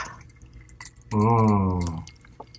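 Galliano liqueur pours into a shot glass in one steady stream of about a second, making a sustained, faintly rising ringing tone against a quiet background.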